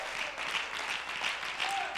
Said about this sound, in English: Would you clap your hands for the Lord?